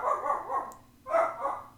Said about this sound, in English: A dog barked in the distance.